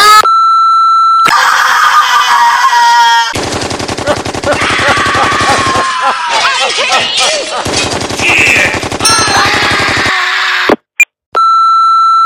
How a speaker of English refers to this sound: Leave a message. You have to beep, fuckhead. Thanks.